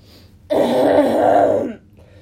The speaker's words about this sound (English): That's not a very flattering sound. I have congestion. That sucks. You haven't coughed like that at all until just now. Okay, it's not a cough, it's me clearing my throat.